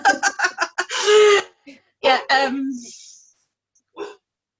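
A standard schnauzer barks loudly as the postman arrives: a rapid burst of sharp barks, then a drawn-out growly bark, a couple more barks, and one last bark after a short pause.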